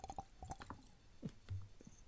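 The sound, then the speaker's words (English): Someone drinking water: a quick run of soft, wet mouth clicks and sips, followed by a couple of low, muffled gulps. Quiet, with no talking. “And I have to say, sorry, I was drinking some water.”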